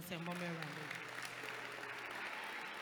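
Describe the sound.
An audience claps steadily for a few seconds for God after a Bible reading, a dense wash of hand claps, while voices call out over it at the start.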